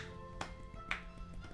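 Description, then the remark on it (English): One person claps twice in response to someone sliding down a banister, two sharp, separate slaps about half a second apart, over a steady humming tonal background with no talking. “So then I clap then.”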